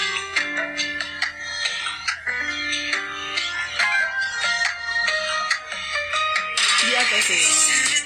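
A K-pop song plays from a recording: bright melodic layers over a steady beat and low bass hum, swelling into a fuller, brighter burst near the end.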